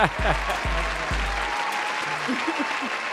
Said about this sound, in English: Round of applause for Joe in the intro.